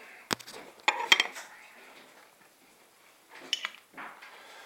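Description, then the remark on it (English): A sharp metallic pop and clink as a De Heidebrugge bottle opener pries the cap off a 0.33 L bottle of Reservoir Dogs Batch 50 Imperial Stout (9.5%), followed by a few glassy knocks and, later, short hissing, fizzy bursts as the thick black stout pours into a glass, fairly quiet. “Alright, so let's get this out into my glass and see what I think.”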